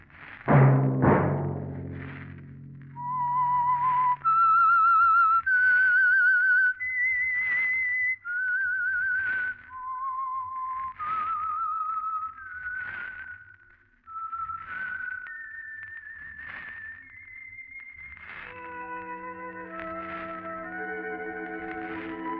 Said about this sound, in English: Let that whistle be your signal for the Signal Oil program, The Whistler, each Wednesday night at this same time.